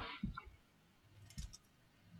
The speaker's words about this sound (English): I'm typing on my lap here, which is why I'm making typos.